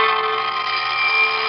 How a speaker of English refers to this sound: nagging clatter of my alarm clock at home was wakening me one morning.